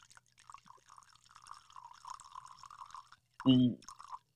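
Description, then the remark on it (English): Crown whiskey, poured by a woman playing bartender, pours into a glass in a steady gurgling trickle lasting about three seconds, followed by a brief, louder burst of a voice. “The Crown pour.”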